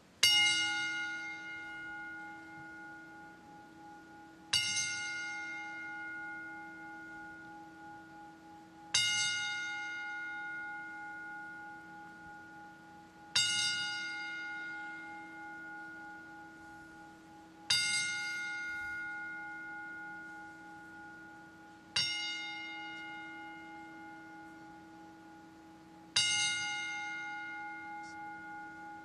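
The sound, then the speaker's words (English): A single bell tolls slowly and evenly as a 10-bell salute of respect for someone who recently passed away, seven loud strikes about four seconds apart, each ringing out with a long shimmering decay. No voices are heard. “I do want to show respect by doing a 10-bell salute.”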